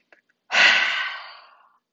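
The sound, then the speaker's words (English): A brief faint intake of breath, then a loud, forceful breathy lion-breath exhale, 'haaa', made as a breathing exercise, bursting out strongly and trailing off over about a second. No talking. “So on the count of three, we're going to breathe in, and then once we have all the air in our stomachs, or rather our lungs, we are going to make a huge lion's noise and breathe out.”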